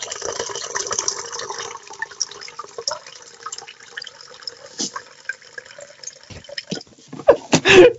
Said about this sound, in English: I think it sounds more like you're having a pee. Sorry, I should flush the toilet right now for some wine. Can you not edit it out because I've poured me wine now? What bottle have you got? Well, it's a box with a tap.